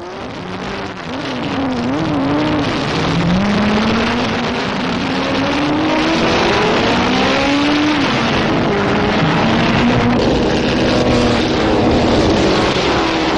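Racing car engines, including Bentleys and an Alfa Romeo, roar continuously at the Brooklands Double Twelve motor race in Britain, a two-day handicap race for cars of all sizes, with rising and falling pitch as several cars accelerate and pass by at speed, loud and sustained throughout with no voices.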